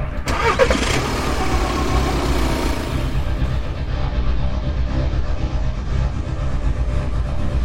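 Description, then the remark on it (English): A car engine cranks with a brief whirring starter burst, then catches and settles into a steady, low idling rumble that continues to the end. “I need you to get in your car and drive.”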